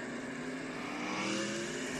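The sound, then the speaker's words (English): Loud, steady roar of race car engines running together on a restart under the green flag at Talladega, a dense mechanical drone with a slight swell in the middle and no voices. “We're gonna go back under the green flag.”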